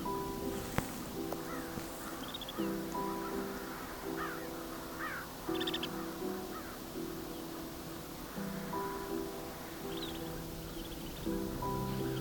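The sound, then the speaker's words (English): A flock of about 11 birds perched on a wire calls continuously, harsh overlapping caws repeating in uneven bursts throughout, steady in loudness, with a faint outdoor background and no talking. “Now we're down to about 11 birds on the wire.”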